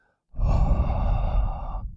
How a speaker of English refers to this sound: We can do a soft intro. Yeah. So, a soft breathe straight into the mic. Let's, intro. Let's harmonize breathing.